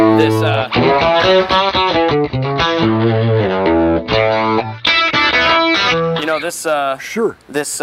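A distorted electric guitar, played on its bridge pickup with hum cancelling, plays a bright, driven riff. Chugging palm-muted chords alternate with sustained bent notes that ring out with a biting, trebly edge.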